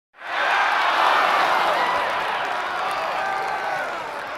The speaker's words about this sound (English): Give him a round of applause. We can insert some, like, fake applause.